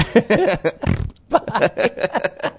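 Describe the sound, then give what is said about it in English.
A short, low, rumbling fart noise sputters out for about a quarter second, fairly loud, with voices talking and chuckling just before and after it. “Oh, we should have a fart noise right there.”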